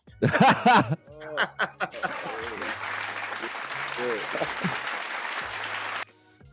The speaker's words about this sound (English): You know what? I see what makes you motherfuckers cheer, dude.